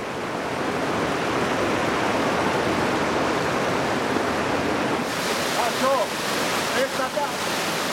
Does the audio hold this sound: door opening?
no